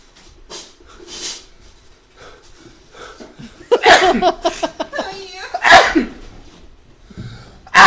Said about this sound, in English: I'm going to sneeze again.